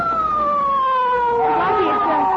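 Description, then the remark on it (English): A police siren wails steadily in long, sliding tones, growing louder and busier as it draws nearer, with a faint murmur of background noise beneath. “It's Faraday in that police car.”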